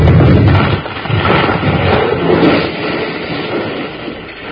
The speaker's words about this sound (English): You sure were smart to figure on setting that big beam to fall right over the door, Colorado.